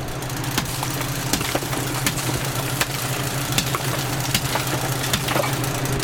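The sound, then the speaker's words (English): Irregular sharp knocks and clinks of a hammer chipping at built-up ice in a freezer to break it down, about a dozen strikes at uneven intervals, over a steady low mechanical hum that runs throughout. “Okay, so you got kind of a lot of ice built up, and you got to break it down now with a hammer.”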